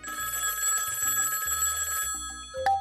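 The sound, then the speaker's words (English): A telephone on the Grabstack Radio Show phone line rings with a bright, continuous electronic trill, loud, then cuts off near the end with a short click and tone as it is picked up. “Let's take this one to the Grabstack Radio Show phone line.”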